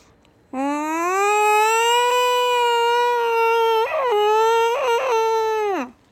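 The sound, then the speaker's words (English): A single long, loud yowl of cats mating, a drawn-out wailing cry lasting about five seconds, rising slightly in pitch, with a couple of brief warbling breaks before it fades out. No talking. “When I was trying to attempt sleeping at night, even though I was just so scared, this is what cats sound like when they are mating.”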